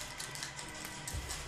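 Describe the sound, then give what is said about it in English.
Three dice rattle and clatter in a quick burst of light, irregular clicks and taps as they are rolled in a game, fairly quiet, with a low rumble underneath and no talking. “Did you roll your dice”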